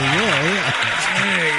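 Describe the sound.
A round of applause, a steady dense patter of clapping, with a voice calling out over it and sliding up and down in pitch.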